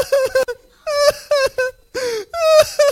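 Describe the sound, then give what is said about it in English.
A man's voice imitates John weeping in a Bible passage: loud, anguished weeping in three bursts of high, wavering wails, each broken into short sobbing pulses with brief gasping gaps between them. “So, John was weeping.”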